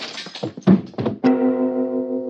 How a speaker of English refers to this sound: Whew, that was close. Look at the knife there, embedded. I could hear it whiz right by my ear.